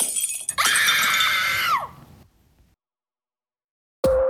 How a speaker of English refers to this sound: Glass starts to break.